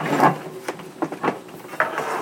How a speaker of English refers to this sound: I'm going to plug in the air fryer. And I just plugged it in.